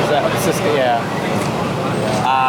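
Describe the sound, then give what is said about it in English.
A large truck rumbles past outside, a loud, steady engine roar with a whining drone that fills the whole few seconds without letting up. “Do you want to try pitching me again after the truck?”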